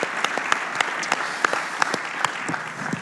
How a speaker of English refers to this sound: As you're clapping for them, know also that they've filled interim slots on the board, so they've been serving as board members, as we've shared in our family meetings through the last few months, and now they're officially in, so congratulations.